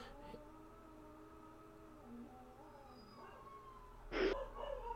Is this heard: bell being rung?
no